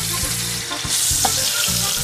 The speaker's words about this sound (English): You know, he's a man's man, but he's in the kitchen. He's in the kitchen there, he's frying for his boys.